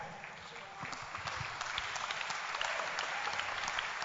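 A crowd of people clapping together in sustained applause at a church service, offered as a clap offering to Jesus, a dense steady patter of many hands that swells slightly louder toward the end, with a murmur of voices underneath.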